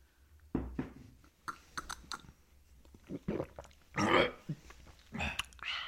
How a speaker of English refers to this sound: Oh, a little gulp. Give your drink. Oh, yeah. A little drink gulp.